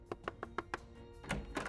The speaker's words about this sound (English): As he knocked on the ex-cop's door, his heart pounded in his chest.